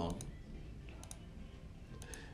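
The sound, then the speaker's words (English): Quiet typing on a computer keyboard, a few light key clicks landing in quick pairs about once a second over a low background hum, with a faint voice murmuring at the start. “Look, I'm typing right now.”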